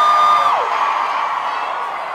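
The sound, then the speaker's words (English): A large live-concert crowd at Lori's Roadhouse in Westchester roars and cheers loudly and continuously, with a piercing whistle or shriek sliding downward near the start before the dense wall of noise carries on. “That was a roar of applause.”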